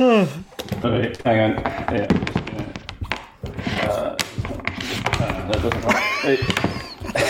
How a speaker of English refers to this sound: Just knocked over a bookcase. try to add an extra book to the thing.